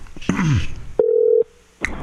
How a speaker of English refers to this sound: Cassie's going to give him a call, get him on the line. It's ringing.